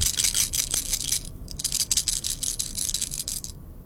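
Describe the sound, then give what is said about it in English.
A handful of Skittles candies rattle continuously in a cupped hand, a dense, rapid clicking shake with brief pauses, fairly loud, with no voices. “It was Skittles shaking in my hand.”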